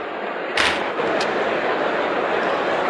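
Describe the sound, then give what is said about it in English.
A steady, dense roar of a video game hockey crowd fills the whole stretch, broken early by a loud, sharp crack and a second, briefer knock soon after. “Listen to that crowd.”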